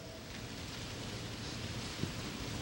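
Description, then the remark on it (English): A soft, continuous rustling wash of many Bible pages being turned at once holds steady throughout, with a single faint tick near the end. No voices. “By the way, I love to hear pages turning.”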